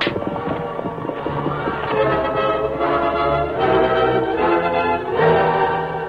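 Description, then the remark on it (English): Horses trot with a steady clip-clop of hooves, and loud whinnies rise over the hoofbeats several times, fairly loud throughout, as the horses are urged on to head for home. “Larry, them horses, Baldy, and get for home. Get up there.”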